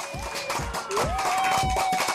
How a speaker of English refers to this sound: Please. Nice round of applause for my man,